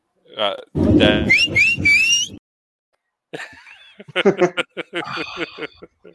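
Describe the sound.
A fan at a ballpark whistles loudly, a few piercing rising notes over busy crowd noise, followed by a burst of chatter and laughter-like voices nearby.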